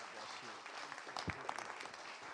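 An audience applauds to welcome a speaker coming up to preach the word of God, a dense, steady wash of many hands clapping that fills the whole moment, with a few sharper, louder claps standing out midway.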